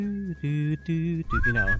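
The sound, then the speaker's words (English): A person whistles a short Wild West film melody evoking spaghetti western scores, a thin, slightly strained tune of a few held notes that rises at the end, with voiced tones underneath. “Definitely all of this with the whistle evoking the Wild West calls back to”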